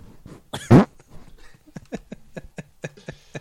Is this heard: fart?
yes